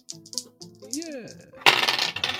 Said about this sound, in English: I'll help. I will help out. I rolled a 12.